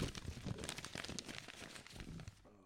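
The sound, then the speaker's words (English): Continuous rustling and crinkling of a ream of paper sheets being shuffled and handled, with dense crackly bursts throughout that stop abruptly near the end. “Ream of paper that we got here.”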